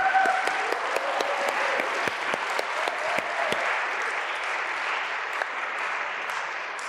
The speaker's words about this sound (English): I'd also like to say that my dad is here. He's just over here. So a big round of applause for my dad.